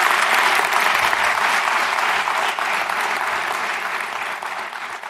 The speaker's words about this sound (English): So I think we're out of time now, but if we could just have one more round of applause for Mr. Stossel. Thank you very much.